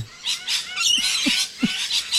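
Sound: parrot squawking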